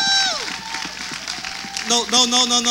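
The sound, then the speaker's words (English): An audience claps steadily, a dense patter of hands mixed with crowd noise, while high whoops and cheering voices rise over it, swelling louder near the end. “So while y'all clapping, popcorn, shrimp, and fries.”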